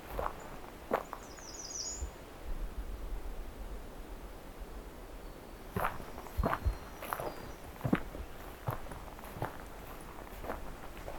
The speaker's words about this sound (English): We got a thrush ahead. Yeah, we've got a Swainson's thrush here. To see if I can get close enough to it though.